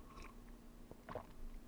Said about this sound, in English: So first, I'm going to take a sip of my coconut water out of my coffee mug.